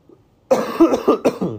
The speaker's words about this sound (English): God, I cough like I have been living for 99 years. I cough like I invented the pyramids.